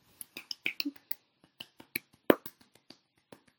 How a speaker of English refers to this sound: That was a very long clap. People who are listening are probably like, oh gosh, just move on to the next topic.